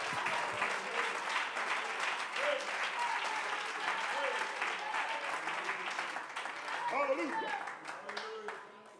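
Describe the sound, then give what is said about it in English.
An audience claps their hands unto the Lord in a steady, dense burst of applause that holds strong throughout, with a few voices calling out over it before it begins to fade. “Somebody clap your hands unto the Lord and magnify.”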